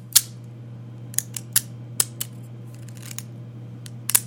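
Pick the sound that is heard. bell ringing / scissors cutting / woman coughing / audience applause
scissors cutting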